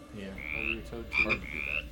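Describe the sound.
A toad croaks in a few moderately loud bursts, raspy low calls mixed with rising high-pitched trills, repeating in a quick, uneven rhythm with no talking.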